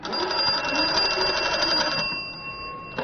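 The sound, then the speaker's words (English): An early telephone, without a dial or touch-tone buttons, rings its bell in one continuous rattling burst for about two seconds, then cuts off, leaving a faint lingering metallic hum and a short click at the end. “And then you pick up the receiver and... One moment, I'll connect you. Thank you for your interest in Early Telephone.”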